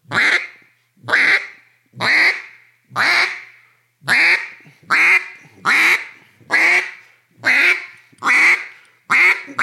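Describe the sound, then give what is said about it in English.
A duck call blown in a steady series of about eleven loud, raspy quacks, each short and evenly spaced, with no talking. “So that quack is the basis of those greeters.”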